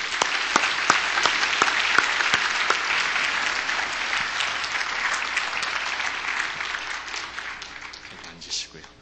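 Sustained applause from an audience, a dense steady patter of many hands clapping loudly for several seconds before gradually thinning out toward the end.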